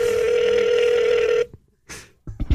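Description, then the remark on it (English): A steady electronic telephone tone from a phone call placed from a radio studio hums for about a second and a half, then cuts out, followed by a brief pause and a few short, sharp bursts like dialing or line noise. “You can call me from the studio.”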